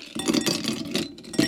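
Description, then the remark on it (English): Ice cubes are added to a glass while mixing a drink, clattering and clinking in a quick, jumbled rattle lasting about a second and a half, moderately loud, with no talking. “First thing I'm going to do is add some ice to the glass.”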